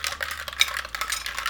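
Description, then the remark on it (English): A spoon stirs a glass of lemonade in quick, repeated scraping swishes with a few bright clinks against the glass, steady and fairly quiet, with no talking. “Okay, just kind of have to like mix it a little bit. Mix it. Yeah. Stir it. You may have to reuse that spoon too.”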